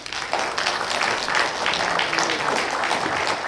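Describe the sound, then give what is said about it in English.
An audience at the One Elberton Community Watch and Faith in Blue event breaks into steady applause for guests, many hands clapping in a dense, continuous wash that starts abruptly and holds at an even loudness throughout. “And if we're about to get up and come down, if you guys would just give these folks a round of applause, please.”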